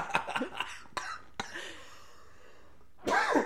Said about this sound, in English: Time and place. Yeah, time and place for that cough and not on the podcast.